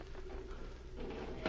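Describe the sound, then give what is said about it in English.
A door is opened: a low rattle and creak over a steady background hum, ending with a short, sharp latch click near the close. “Quick, see if the door is unlocked.”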